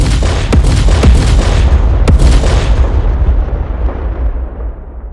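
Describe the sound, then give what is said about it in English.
Heavy booming blasts of cannon fire from ships in a sea battle ring out over a constant deep rumble, with sharp cracks near the start before the roar slowly fades; no voices. “Even over the waves and cannon fire, you hear his voice.”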